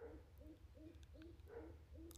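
A pigeon coos in a steady, repeating rhythm, low soft notes following each other about twice a second, over a constant low background hum.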